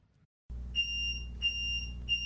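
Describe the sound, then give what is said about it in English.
A smoke alarm sounds three sharp, high-pitched beeps at a steady rhythm, each a bright tone with overtones, over a constant low rumbling hum in a kitchen. “Kitchen disaster.”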